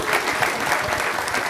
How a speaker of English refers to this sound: Thank you. Can we give a round of applause to our guests real quick?